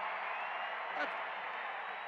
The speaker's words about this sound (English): And Donovan gets a roaring applause as he heads out.